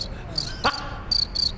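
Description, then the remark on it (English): A voice imitates chirping crickets, giving a few short, high, trilling chirps in quick succession, clear, with no talking around them. “That's a better cricket than I do.”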